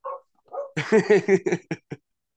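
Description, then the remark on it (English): A dog gives a couple of short whiny yelps, then breaks into a quick run of sharp barks that trail off into a few spaced final yaps. “You know, man, that means you're a good dog owner, I think.”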